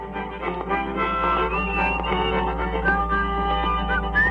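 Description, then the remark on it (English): A man whistles a wavering melody over a steadily playing recording of his own song, taped with a tape recorder around 1950, overdubbing and harmonizing with himself. The whistle sits slightly above the dense, muffled music, and there is a constant low hum underneath. “You could hear him overdubbing and whistling and harmonizing with himself.”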